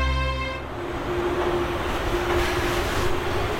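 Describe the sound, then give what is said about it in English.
A subway train rumbles steadily through an underground tunnel, loud, opening with a brief harmonic whine before settling into a continuous roar with a sustained low hum. “Do you know, I always imagine that subway trains are dragons, tearing back and forth across the city in their underground caves, devouring people and spitting them out at random destinations.”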